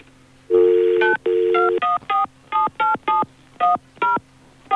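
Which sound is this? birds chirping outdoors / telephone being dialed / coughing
telephone being dialed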